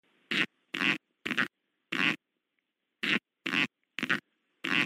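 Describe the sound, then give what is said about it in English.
A series of eight short, sharp popping farts from a Sonoran coral snake in the deserts of North America, warning to back off, evenly spaced with a pause in the middle, loud with no talking. “It is a Sonoran coral snake warning you to back off.”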